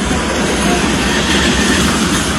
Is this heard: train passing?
yes